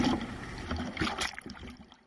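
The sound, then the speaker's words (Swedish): Outdoor waterside ambience along the quays of Stockholm on a windy day, with boat sounds, a broad wash of water and low engine rumble mixed with gusty wind buffeting the microphone, no voices. “Jag fortsätter att knalla här längs Stockholms kajer”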